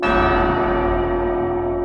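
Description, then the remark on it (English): Heavy bells ring out at night in a loud, sustained peal, their deep tones and shimmering overtones blending into a continuous resonant wash with no voices present. “Bells in the Night”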